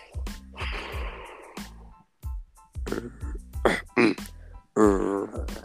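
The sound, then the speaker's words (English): A person imitates a zombie with a series of raspy, breathy vocal bursts, gasps and snorts, ending in a drawn-out guttural moan, with short pauses between sounds. “make a zombie sound.”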